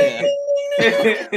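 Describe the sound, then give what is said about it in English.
A bell rings once with a bright, sustained chime that hangs for about a second, while people talk loudly over the end of it. “Ring that damn bell.”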